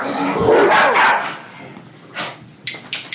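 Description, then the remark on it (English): Several dogs bark loudly and frantically, a dense burst of overlapping barks that thins into a few sharper yips and barks near the end. “Sorry if we blew your eardrums there. Quad dog just threw gas on a fire, basically.”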